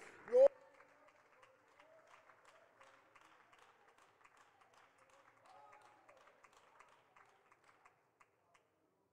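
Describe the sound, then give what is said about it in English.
A church audience claps together in praise of God in a steady, sustained patter after a sharp burst at the start, with indistinct voices mixed in, the clapping thinning out and fading toward the end. “why don't we give Jesus glory right now by a hand clap of praise?”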